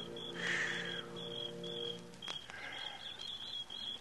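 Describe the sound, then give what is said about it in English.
Crickets chirp in a steady, pulsing rhythm while a bird calls briefly now and then, set against a low background hum with no talking. “The sound of birds and crickets seemed loud in my ears as we stood there, looking at each other, saying nothing.”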